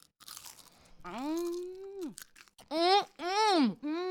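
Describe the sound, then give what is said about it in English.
A few crisp crunches of someone biting into a crispy roasted cocktail potato just taken out of the oven, followed by long, loud appreciative hums and groans from the eater. “Is there anything better than a crispy potato?”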